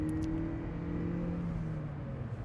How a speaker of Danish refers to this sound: Lad os høre. Ah, lidt bund var der det der. Det var da en god lille første gear. Så ruller vi ned på motorvejen, så får den lige lov at spinde som en anden mis endnu en gang.